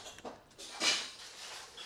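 Someone eating a Boar's Head sandwich live on the Bone Zone: a few soft, crisp crunching and smacking bursts, with one louder bite near the middle, fairly quiet with no talking.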